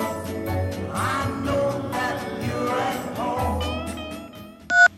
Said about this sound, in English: Answer your phone, girl. Answer your phone. Pick up the receipt.